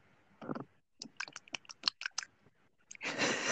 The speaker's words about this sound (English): Let me just sip some tea because my throat is getting really dry already.